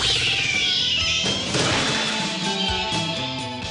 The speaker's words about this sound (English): My cat. My cat. That's not my cat.